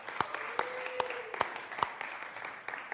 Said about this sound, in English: And really, when we're clapping for them right now, or right there, we're clapping for what God's doing, because we aren't singing for no reason.